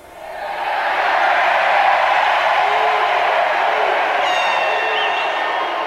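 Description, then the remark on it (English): A large convention crowd bursts into applause at Clinton's closing line, swelling within the first second into a loud, steady roar of clapping and cheering, with a few high whistles cutting through toward the end. “And then finally, though, listen to when they erupt in applause, what he says that causes them to cheer loudly.”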